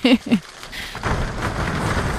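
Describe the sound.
About 24 people slap their legs to imitate rain, led by a conductor in front of them; a dense, steady patter builds after a couple of brief voiced tones at the start, moderately loud and continuous.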